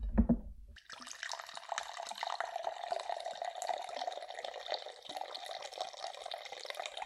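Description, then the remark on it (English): A short low knock, then a steady stream of vodka, about 3 ounces for a cocktail for two, poured into a glass, a bright splashing trickle that runs on without a break for several seconds. No one speaks. “So did pour 3 ounces of vodka for the two of us.”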